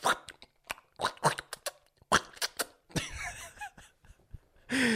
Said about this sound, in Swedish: Eller käka popcorn.